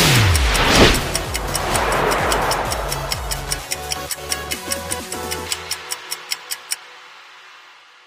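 A clock ticks steadily and crisply, about two ticks per second, over a fading rumble of a car engine that revs at the start; the ticking stops near the end.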